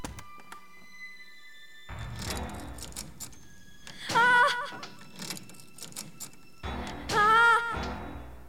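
Someone rattles and strains at a shut cellar door, trying to get in, with muffled thumps, scraping and two loud creaking, squealing surges as it is pushed. Insistent, no voices.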